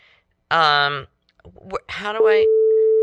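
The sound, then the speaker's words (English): A phone rings with an incoming call at a radio station during a live broadcast: loud electronic tones, two sustained buzzy bursts, then a long, steady pure tone that holds to the end. “So she's calling. Do you hear this?”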